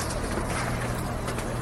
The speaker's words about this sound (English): Yeah, that's ridiculous. Yeah, they're driving a boat through the streets.